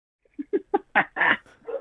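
A dog barks in a quick run of about six barks, starting with small yips and building to fuller, louder barks, with no talking.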